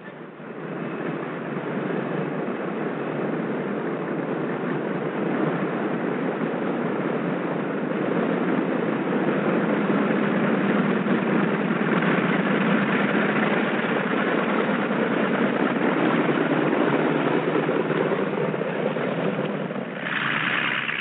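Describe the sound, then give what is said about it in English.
A steady, droning airplane engine rumbles continuously as the plane taxis to the warm-up block before takeoff, holding an even loudness throughout with a slight swell near the end. No one speaks over it. “Control having given us permission, we taxi over to the warm-up block.”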